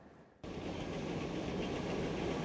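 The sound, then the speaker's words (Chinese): Model trains run steadily along the tracks of a scale model layout, built by local model train enthusiasts, that recreates Chattanooga, Tennessee, as a railway hub. A continuous rolling rattle and whir starts abruptly and carries on without pause, with no voices. “他们用成比例的这个模型，精确地再现了作为铁路枢纽的查特鲁加，一列列精致的模型火车在其中持续的运转。”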